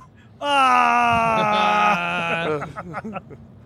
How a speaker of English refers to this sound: What are you screaming about? I was just letting you get all of that out of your system.